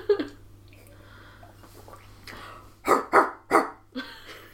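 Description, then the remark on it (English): A person imitates a Bernese Mountain Dog's bark, giving three deep, gruff woofs in quick succession near the end, fairly loud, after some quieter breathy throat sounds and a low steady hum. “The Bernese Mountain Dog.”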